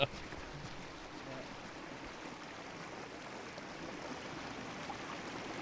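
river water flowing

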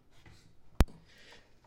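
sneeze

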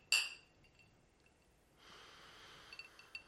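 cocktail glasses clinking

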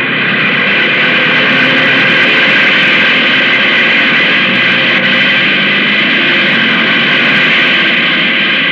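airplane engine roaring

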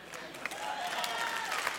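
church audience clapping

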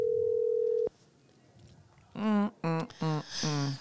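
phone ringing

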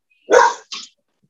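dog barking

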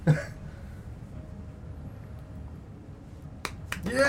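hand clapping

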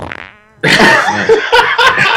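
fart

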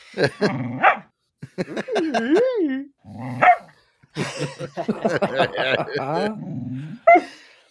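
dog barking and growling

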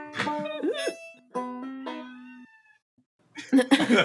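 cat meowing

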